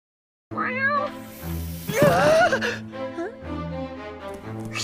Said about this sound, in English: But this conversation doesn't get far, though, because the cat walks into the room and announces itself with a meow, which is echoing from inside of the Zero mask, which is currently stuck on its head now.